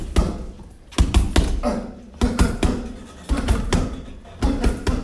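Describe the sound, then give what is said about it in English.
A series of heavy, dull thuds, about ten in irregular pairs and bursts, as fists pound a punching bag in a gym. Each hit is loud and sharp, with no talking. “I just want, here's the punching bag right here. Let's get a few hits in.”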